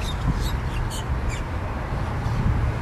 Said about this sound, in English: So you hear those birds that are there? So those birds, it's a particular type of parrot. Looking up at them now, there's these parrots that are in Miami. They're like our green parrot.